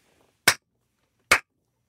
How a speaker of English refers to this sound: I'm clapping, baby.